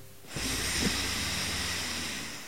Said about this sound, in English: I'm not coughing. I'm just clearing my throat.